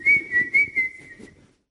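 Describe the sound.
Someone whistles a short, fairly steady tune in quick rhythmic pulses for over a second, with soft thumping or scrubbing noises underneath before it trails off.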